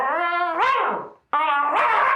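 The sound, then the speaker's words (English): A small, very hairy Pomeranian with a bow in its hair, scrambling around a corner, lets out two drawn-out, high-pitched yaps, the first sliding downward in pitch, with a brief gap between them and no talking. “Around the corner, like, scrambling, is like a little Pomeranian.”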